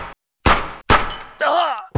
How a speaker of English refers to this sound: Jeez, I thought maybe somebody would tackle him or knock the gun out of his hand, but you straight up shot him. Is he dead? Yeah, he's dead.